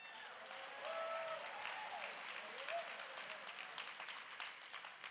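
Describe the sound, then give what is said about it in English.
Sustained audience applause, a dense, steady wash of clapping lasting about five seconds, with a few faint voices and whoops rising above it. “Come on, another round of applause.”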